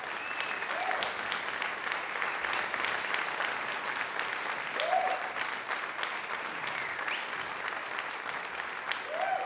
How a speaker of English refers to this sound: Let's hear a round of applause for all of the winners so far.